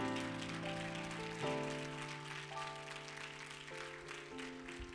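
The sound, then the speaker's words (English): A church audience claps hands steadily and strongly after a prayer, a dense, hissing wash of applause while sustained organ chords ring and change underneath; no one speaks. “And all of God's people said, come on and clap those hands real strong, real strong, real strong.”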